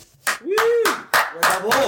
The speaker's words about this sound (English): Right. You just got your plugs applauded. How's that feel?